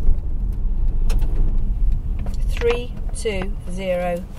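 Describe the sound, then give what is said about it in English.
A car drives onto the M25 motorway with a steady, heavy low rumble of engine and road noise, a few sharp clicks early on, and voices talking over it in the second half. “Hello, we're just getting on the M25.”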